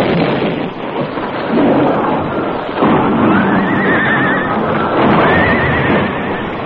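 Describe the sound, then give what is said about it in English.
A loud, sustained roar of an explosive charge fired beneath the Crazy Creek Bridge rumbles throughout, bringing the bridge down, while the horses of the Lone Ranger and Tonto, standing mid-bridge, neigh over it, with two shrill whinnies rising near the middle and the end. No one speaks. “The Lone Ranger and Tonto were on their horses in the middle of the bridge when the air was shattered by a blast.”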